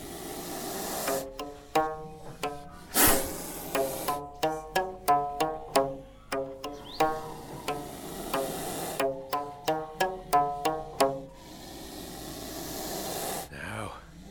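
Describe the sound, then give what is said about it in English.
A bullnose snake hisses in sharp, breathy bursts, one near the start and a longer one toward the end, while a ukulele is strummed in quick, steady chords throughout to calm it. “That's typical of the bullnose snake now.”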